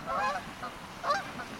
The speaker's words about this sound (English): Wow, that's a lot of geese.